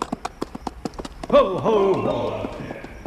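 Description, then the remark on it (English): A horse's hooves clip-clop in a quick, steady rhythm for over a second as the horse goes out from under its rider, then a loud, drawn-out voiced cry rises and takes over, with the hoofbeats fading beneath it. “And then just hang there and have the horse go out from under you.”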